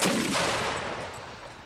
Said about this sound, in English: By now, though, it's around 1 p.m., and some of the men can now hear cannons firing to their north. The battle for Saunders Field has begun.